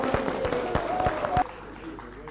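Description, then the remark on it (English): An audience gives Jesus a hearty clap, a loud, dense burst with a few sharper individual claps standing out, plus a faint voice or tone, then the applause cuts off abruptly after about a second and a half. “Well, first of all, shall we give Jesus a real hearty clap?”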